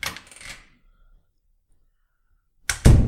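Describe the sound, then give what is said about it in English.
A door opens: a brief rattling clatter, a few seconds of quiet, then a sharper, louder knock and thump as it swings. No one speaks. “I heard the door open.”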